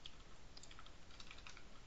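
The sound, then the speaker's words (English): Rapid typing on a QWERTY computer keyboard while entering a command to change a key file's owner, a quick irregular patter of light key clicks, with no voices. “And I'm going to change the owner of that key such that it is git:, don't know where that is on the QWERTY keyboard anymore, users, and that will be gitolite.key.”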